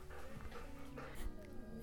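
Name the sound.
dog whimpering and crying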